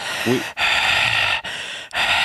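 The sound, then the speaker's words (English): A person loudly imitates the labored, gasping breathing of a dying man taken off a respirator: a short voiced catch, then several long, raspy wheezing breaths separated by brief pauses, no words spoken. “That's him breathing right now.”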